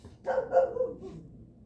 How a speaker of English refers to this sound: And hold on, let me see what this fucking dog's barking at. Am I being attacked? I'm sorry, I'm in the garage. Oh, she's barking at you. Okay. She's barking at my brother. My brother was doing stuff with the trash can.